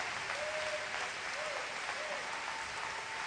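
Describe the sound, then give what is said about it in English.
An audience claps steadily in praise of God, a dense wash of many hands blending into continuous applause, with faint voices calling out briefly beneath it. “If you believe that, clap your hands with me and praise him.”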